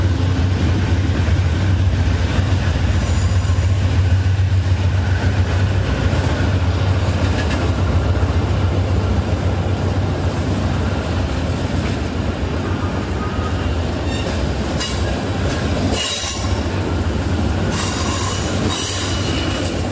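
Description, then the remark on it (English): A passenger train rumbles steadily and loudly through a railway tunnel opened in 1917, heading toward Whitefish, a dense enclosed roar of rolling wheels with occasional metallic squeals and bursts of hiss rising over it. “The tunnel was opened in 1917 following the need to reroute the railway because of the construction of the Libby Dam.”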